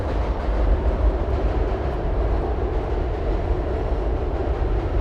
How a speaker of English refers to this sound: We'll wait for this train to pass.